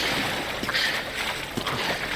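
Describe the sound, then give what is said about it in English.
Barrels carrying people drop and splash into rushing river water, with two or three loud splashes over a constant roar of flowing water. No one speaks. “And then just knowing that, I throw my shoulder into the edge to follow suit as we all drop into the water.”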